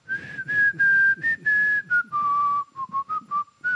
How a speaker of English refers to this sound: I definitely spent a long time not being able to whistle. I've finally mastered whistling. Have you really? Yep. Can we hear it?